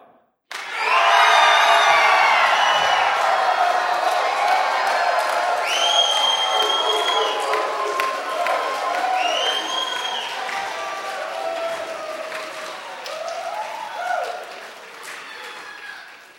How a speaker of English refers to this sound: So let's stand up. And in honor of Ascension Day and what it stands for and the Christ who reigns on the throne, let's cheer our guts out in 3, 2.